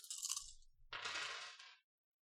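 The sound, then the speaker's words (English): A handful of six dice rattles and clatters across a hard surface in two quick, bright, loud bursts of clicking, with no one talking. “If I can find enough dice, there we go.”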